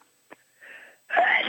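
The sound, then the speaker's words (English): A single sneeze: a short click, then a breathy drawn-in gasp, followed by a loud explosive burst with a voiced edge, with no talking. “Damn. Bless you.”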